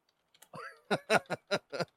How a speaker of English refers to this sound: You're searching already? What, to see if there's another vanilla? I'm typing types of vanilla ice cream.